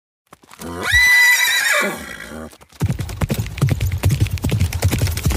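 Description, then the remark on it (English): A horse whinnies loudly for about a second and a half, then hooves clip-clop in a quick, steady rhythm as a rider carries a bucket out a distance to serve as a shooting target, continuing to the end without any voices. “Why don't you get one of your men to run it out there a ways yonder on your horse, and I'll take a shot at it.”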